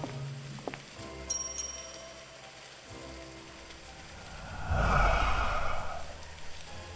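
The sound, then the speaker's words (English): A small bell dings twice in quick succession, bright and fairly light, rung by someone to get attention; a few seconds later a louder rustling, shuffling noise swells and fades. No one speaks. “Well, there's a bell. I guess I'll change that.”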